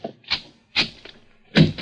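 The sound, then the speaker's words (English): A door being opened: a quick series of sharp latch clicks and wooden thunks, about five in under two seconds, with no one speaking. “Open the other door, Joe.”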